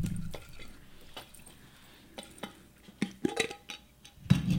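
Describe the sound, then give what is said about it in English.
Small objects rattle inside a glass jam jar to mimic a dice roll: a string of sharp, irregular clicks and clinks, mostly soft, with a denser, louder clatter near the end and no talking. “It's supposed to be like a dice roll?”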